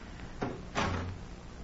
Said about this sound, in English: Follow me, gentlemen. Out this way and shut the doors behind us.